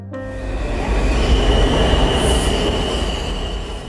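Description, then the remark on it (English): A metro train rumbles in at the Columbia Heights Metro Station in Washington, DC, its wheels letting out a steady high-pitched squeal over the heavy, continuous roar of the cars on the rails. “If you were to walk out of the Columbia Heights Metro Station, you'd notice that there aren't a lot of trees around.”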